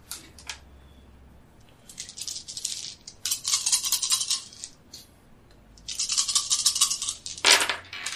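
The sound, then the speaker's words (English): A large handful of dice rattles and clatters in several bursts, shaken hard and spilling out, with quiet gaps between the loud, bright rattling spells. No one speaks. “I'm only on 27 dice.”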